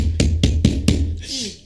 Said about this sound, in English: Bro, who's knocking on your door?